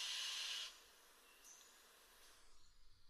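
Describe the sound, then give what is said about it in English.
A satin bowerbird gives a loud, harsh hissing call lasting just over half a second, followed by quieter scratchy rasps and faint clicks in a still background. “And these birds are well known for the huge variety of sounds that they make.”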